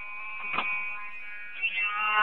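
hotel fire alarm ringing

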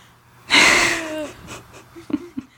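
a yawn

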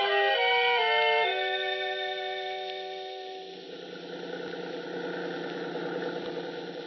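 bus engine running

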